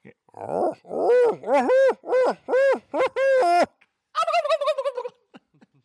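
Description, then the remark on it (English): A diaphragm game call imitates animal voices: a fast run of rising, yelping gobble-like notes, then a quavering, pulsing series of higher calls, loud and alone with no talking. “Get that diaphragm call out. Take us out with the many voices.”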